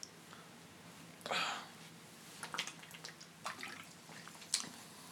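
Someone sips a drink: one longer wet slurp, then a scattering of short, quiet gulps and liquid clicks at irregular intervals, with no talking.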